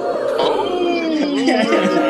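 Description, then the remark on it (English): A brief crowd reaction sound effect: many voices overlapping in a loud, sustained swell of oohs and cheers, pitches sliding up and down for about two seconds. “The crowd loving their misogyny today on this beautiful Monday.”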